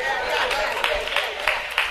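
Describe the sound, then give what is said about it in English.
Several sharp hand claps ring out at an uneven pace over a steady, busy crowd murmur, each one a crisp, moderately loud snap. “I clap my hand and I can jump.”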